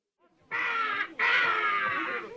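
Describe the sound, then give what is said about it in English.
A bird caws loudly as it flies away, two harsh, raspy calls in a row, the first short and the second drawn out longer, with no talking. “In one last show of magic, Taminella turns into a bird and flies away.”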